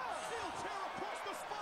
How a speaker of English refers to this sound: Here comes some more Eddie Guerrero steel chair to those injured ribs. Oh my God.